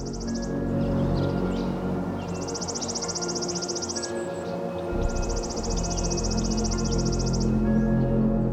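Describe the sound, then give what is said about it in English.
A chipping sparrow sings at 50 Point Conservation Area, its dry, rapid trill of evenly spaced high chips repeated in long bursts of about two seconds, over a steady low background rumble. “Chipping sparrows are found in urban areas, including bird feeders, and in natural spaces where trees are interspersed with grasses.”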